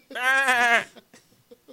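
A single sheep bleats loudly, a wavering, quavering baa lasting under a second, followed by a few faint, brief sounds.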